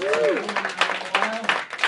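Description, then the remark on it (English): Audience applause at a Grassroots Comedy DC stand-up show at a tavern in DuPont Circle: a dense, steady wash of many hands clapping for about two seconds, with a voice murmuring underneath at the start. “Thank you for clapping.”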